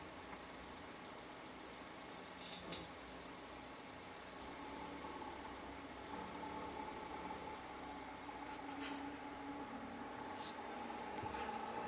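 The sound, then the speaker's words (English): A car engine starts and rumbles steadily, then its tone climbs slightly as the car drives away, staying fairly faint against background noise with no one talking. “I can see his car starting. He's just driving away.”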